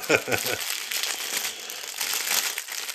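Loud, continuous crinkling of a snack wrapper as someone nibbles a snack, with bursts of crackly rustling, mixed with brief low chewing or handling sounds near the start.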